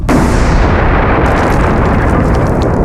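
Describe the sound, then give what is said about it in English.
A massive explosion in tunnels bursts in at once and keeps roaring as a dense, rumbling wall of low-end noise as the tunnels cave in, loud, with crackling debris sounds of rock scattered through its tail. “A deafening explosion thundered from behind them, urging them to follow Doran's direction.”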